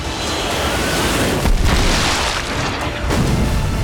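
explosion sound effect

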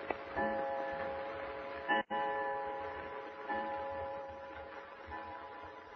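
clock ticking

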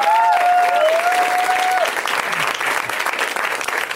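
audience round of applause

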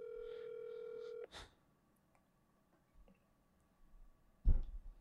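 phone call ringing tone

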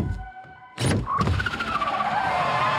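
car tires skidding

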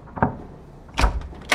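door being opened

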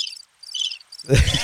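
crickets chirping

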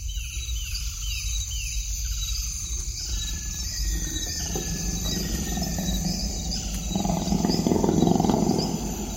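tiger roaring

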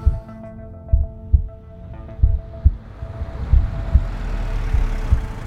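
heartbeat sound effect

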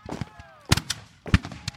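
gunfire exchange

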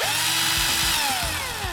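power drill whirring

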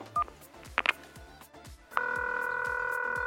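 telephone ringing

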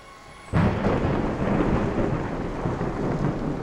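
thunder clap

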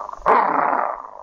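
dog growling

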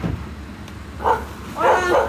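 dog barking

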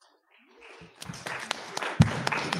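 audience applause

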